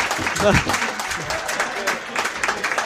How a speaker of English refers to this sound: And Hitchin Town have won this 4-3. There's a standing ovation here at Topfield and in front of us. What an incredible comeback that is.